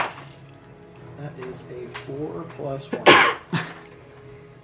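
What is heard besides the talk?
sneeze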